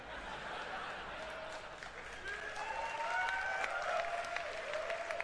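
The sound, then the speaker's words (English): An audience at the back of a theater at a Ubisoft briefing applauding steadily, dense overlapping clapping at an even, moderate level throughout, with a few high whoops and cheers rising over it partway through. “Everybody clapping is in the back of the theater because they were late.”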